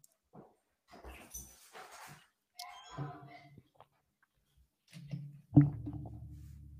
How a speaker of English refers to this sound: I got to let my dog out. He is whining and he is.